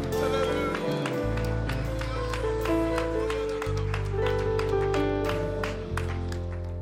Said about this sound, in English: Let's go ahead and give a hand clap of praise to Jesus real quick.